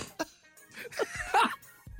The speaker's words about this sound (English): Oh, I'm the only one heard the cough. I'm the only one.